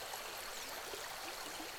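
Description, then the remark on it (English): A small river flows steadily, its broad, even rush of water fairly loud, with faint trickles and gurgles running through it and no voices. “Some guerrilleros pointed her toward a small river.”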